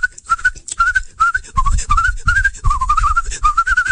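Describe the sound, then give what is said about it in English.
Someone whistles an imitation of birds tweeting: a steady run of short, warbling chirps and trills over about four seconds, with some low thumping noise underneath. “Well, the birds flew out, and they began to tweet and whistle.”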